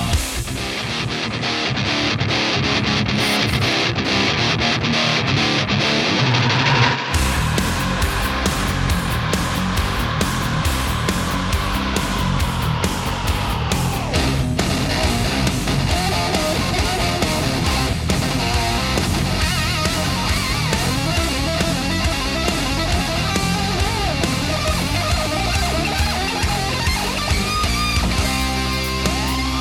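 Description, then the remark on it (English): A loud, dense burst of distorted electric guitar with a full band kicking in after a few seconds, driving steadily and continuously without any voices. “And he pulled that pick across the strings, and it made an evil hiss. The demons all joined in, and it sounded just like this.”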